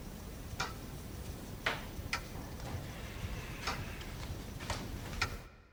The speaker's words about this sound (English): There was something special about this clock. I recorded a clock and then manipulated it to be just ever slightly slower than 1 second a tick, and it kind of makes you lean into the ticks, into the sound of the clock.